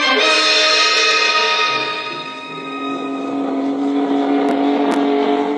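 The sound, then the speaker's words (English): A speedboat engine roars loudly, holding a steady high-pitched drone that dips briefly in the middle before revving back up, with no voices. “Get the speedboat!”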